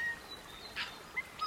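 Faint, scattered birdsong in a New Zealand forest: a few short high whistles and chirps at irregular moments, quiet over a soft, steady outdoor background, with no one speaking.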